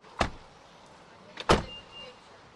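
A car driving on a rainy day through a Mississippi Delta town, with two sharp, brief bursts about a second apart over a faint, steady background hum. No one speaks.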